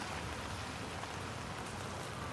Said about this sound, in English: And although listening can connect you to the rain against your umbrella, the cars along the street, and the people walking nearby, listening also reminds you that you are not completely separate from them.